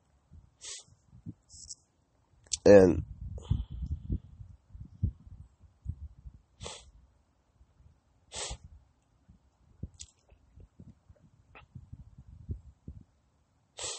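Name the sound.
cough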